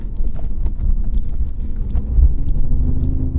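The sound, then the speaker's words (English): A steady, loud artificial engine drone fills a car cabin as the car accelerates, a deep low hum with faint tonal bands, a synthesized sound rather than the real engine, with a few light clicks over the top and no talking. “As for the sound, that's fake sound coming, you know that?”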